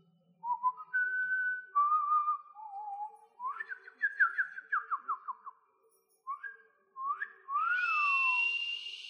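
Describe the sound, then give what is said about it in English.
A person whistles a lively, warbling tune with sliding pitches and quick trills, imitating birdsong, clear with short pauses between phrases and no talking. “Can you whistle?”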